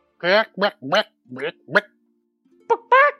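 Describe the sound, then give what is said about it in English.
Someone playfully imitates a chicken while joking around, with five quick, voiced clucks, falls briefly silent, then adds two more. The clucks are fairly loud, with no ordinary talk in between. “And then … and … are just making chicken noises and joking around with each other.”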